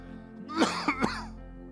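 cough

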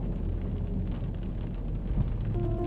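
rain falling

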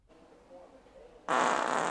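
wet fart

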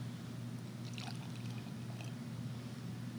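beer being poured out

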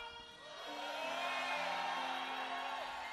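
audience shouting and whooping

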